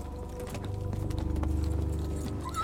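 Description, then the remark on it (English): Horse hooves clop in a steady rhythm over a low rumble, then the beats slow and fade as the Green Knight pulls his horse to a halt. No one speaks. “The Green Knight finally pulled his horse to a stop.”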